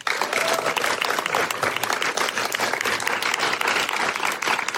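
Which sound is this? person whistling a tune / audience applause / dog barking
audience applause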